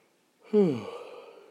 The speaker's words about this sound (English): Oh my gosh. I'm about to yawn.